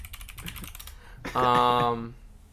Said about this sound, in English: I'm typing this in.